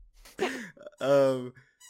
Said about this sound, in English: I'm sorry for anyone who hears my dog squeaking a toy. There's not much I can do about it.